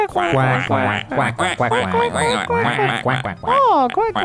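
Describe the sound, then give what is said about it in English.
A loud run of nasal duck quacks, played as a sound effect, one after another for several seconds, with a few higher, wavering calls near the end and no speech. “Quack.”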